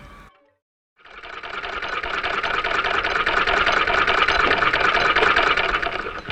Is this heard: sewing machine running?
yes